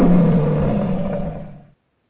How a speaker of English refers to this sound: But the lion will roar.